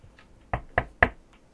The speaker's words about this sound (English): I think my noise suppression is on. I was knocking on my desk.